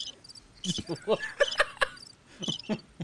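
insect, cricket chirping sound effect

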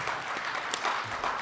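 crowd, audience applause

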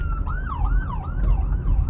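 vehicle, ambulance siren passing by

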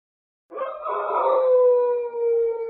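animal, wolf howling

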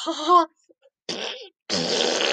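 human body sound, fart

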